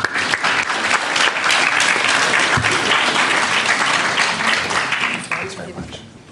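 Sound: audience applause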